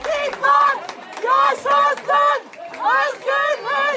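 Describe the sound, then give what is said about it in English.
A crowd in an Istanbul courtroom in Turkey chants and shouts at the judges after the court jails Osman Kavala for life. About eight loud, overlapping vocal bursts come in a steady, rhythmic cadence and quick succession, voices rising and falling together, with people crying and screaming. “People chanted and they were very upset and people cried and people shouted and people screamed at the judges and so on.”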